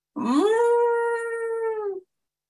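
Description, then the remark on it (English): A voice imitates a sad elephant's wail: one long, mournful cry that swoops upward, then holds steady for about two seconds before cutting off. It is loud and heard alone. “An elephant wailed, a great big wail. Can you cry like a sad elephant?”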